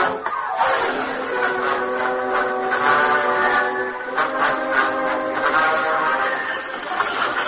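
A train rumbles along while its whistle sounds a long, steady, loud blast that holds for several seconds over the rattling, clattering noise of the moving cars.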